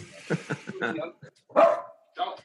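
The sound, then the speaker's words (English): A dog lets out a couple of sharp barks, the first trailing into a brief whine, after a stretch of someone talking. “Where was I before the barking?”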